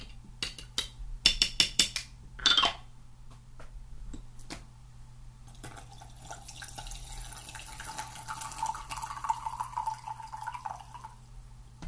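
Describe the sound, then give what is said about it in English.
A few light clinks of crockery, then a steady stream of brewed tea pours into a cup, its tone rising as the cup fills over several seconds. No one speaks. “Okay, I'm back, and I'm also going to pour some tea because I think it's time.”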